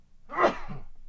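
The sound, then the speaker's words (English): A single loud sneeze with a sharp breathy burst that quickly fades into a brief low exhale. “Gesundheit.”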